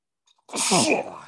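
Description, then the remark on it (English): A single loud sneeze bursts out after a brief faint intake of breath, its harsh airy spray trailing off over about a second. No talking. “See, I'm getting the sneezes for finishing for all the steak knives. Getting the sneezes.”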